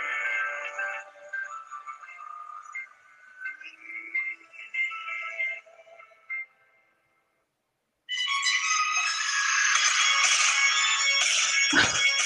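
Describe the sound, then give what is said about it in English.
Tinny music from a phone speaker held to the microphone, playing a Family Guy clip of Peter crying in his car: a softer, mellow sad song plays, cuts out for a brief silence, then a louder, bright, happy, upbeat song bursts in. “Yeah, because he's like crying in his car because he's hearing a sad song, but then the next song's just really happy.”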